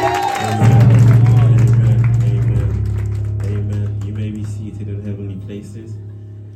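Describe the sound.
An audience claps together as a clap offering to God for several seconds, a dense, steady patter that stays loud throughout, with a low sustained musical tone and some voices mixed in underneath.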